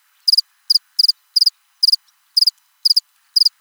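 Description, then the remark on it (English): Crickets chirp alone in a steady rhythm, about eight short bursts of quick high-pitched pulses spaced evenly over a few seconds, clear, with silence between and no talking. “Fucking crickets.”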